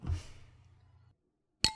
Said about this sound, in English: Ooh, you have a clink. I have two glasses. Very nice.